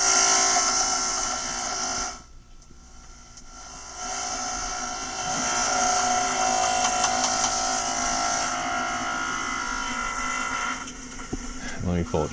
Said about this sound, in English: And I want some good banging hammering. Here. So here, I'll play the construction nice and loud here. Or nice and quick.